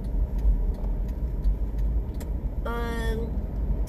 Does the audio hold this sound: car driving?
yes